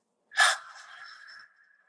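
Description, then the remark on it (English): A sudden, loud gasping intake of breath like a yawn, taken through an open mouth, then a softer, airy breath out trailing off for about a second, alone, with no talking. “And then see if you can open your mouth and take a breath like a yawn. And then on the way out.”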